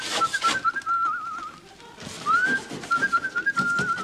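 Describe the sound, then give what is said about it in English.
A person whistles a short, lilting tune imitating Tom's signature whistle from the show The Good Life, the clear notes sliding and wavering in two brief phrases, with breathy hiss around them and no talking. “I mean, it's not really a catchphrase show, Good Life, but you've got, I guess, Tom's whistle.”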